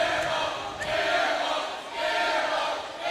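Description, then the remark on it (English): The Bird Squad student section at a basketball game chants "air ball" in unison after a missed free throw, a loud two-part crowd shout repeating in a steady rhythm, rising and falling about every second and a half. “The Bird Squad student section to our right shouting air ball”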